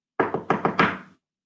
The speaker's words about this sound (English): someone knocked loudly and confidently on the front door. It sounded like a landlord's knock. Or a sheriff's. Four or five hard-knuckle taps in quick succession.